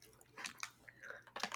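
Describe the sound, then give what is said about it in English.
Wet chewing of a soft candy, with a few irregular squishy smacks and clicks over a second or two, fairly quiet and with no one talking. “Don't do that. Chew it.”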